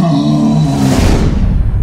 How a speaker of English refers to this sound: He dropped to one knee as Oberon appeared with a roar and barged through the forecasters, yanking off their helmets and dislocating their arms.